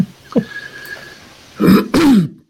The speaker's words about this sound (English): I've been coughing ever since